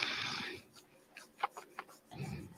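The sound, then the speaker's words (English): A drawn-out yawn: a long breathy inhale, a few small mouth clicks, then a softer breathy exhale at the end, with no talking. “Excuse me, I'm yawning a lot.”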